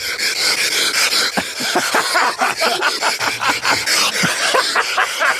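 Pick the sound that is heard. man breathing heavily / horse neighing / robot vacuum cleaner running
man breathing heavily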